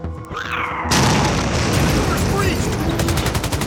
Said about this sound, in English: The bulkhead opens violently.